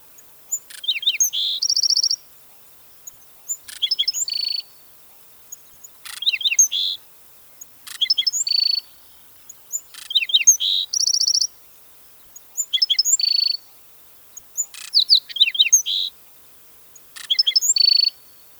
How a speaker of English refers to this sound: Okay, grab your ID guide and find the black-throated sparrow. Their songs are quite distinctive once you know what to listen for and consists of two clear notes followed by a buzzing trill.